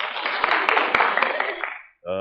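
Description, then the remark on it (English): A burst of applause from a crowd, a dense crackle of many hands clapping that holds steady, then tapers off into silence before a man's voice starts speaking. “slightly radical applause there.”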